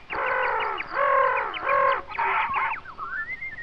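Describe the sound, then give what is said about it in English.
Shrill, harmonic bird cries come in several close bursts, loud, ending in a thinner rising whistle. The calls are squawky and clucking rather than melodic song, and there is no talking. “The animals began to howl. Ooh, ooh, and the birds to sing and cry.”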